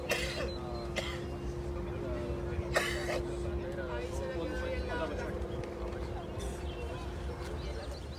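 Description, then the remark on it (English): Several sharp coughs and throat-clearing bursts rise out of the murmur of a crowd of sick people about to be released into the United States, scattered irregularly over a steady low engine hum, with people talking throughout. “Hear all that coughing?”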